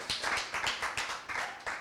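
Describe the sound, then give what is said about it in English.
An audience claps in a brief, steady burst, with sharp overlapping hand claps repeating at an even rhythm and no voices over them. “You can clap.”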